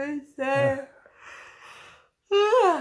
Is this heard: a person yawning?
yes